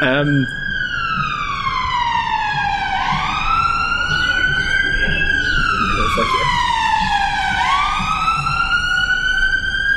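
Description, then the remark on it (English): A loud alarm siren wails continuously, its rich, buzzy tone sweeping slowly up and down in pitch in long rising and falling cycles over a low rumbling background. “Tortured logic alarm.”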